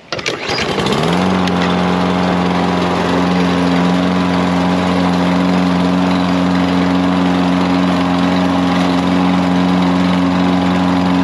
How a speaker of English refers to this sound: The next thing I'm going to do is start my lawn mower up. Start up. I need to start it up. And to do that, I need to pull on the cord. That thing is the cord.